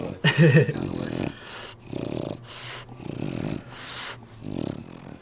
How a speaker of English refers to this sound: Absolutely. Apartment dog.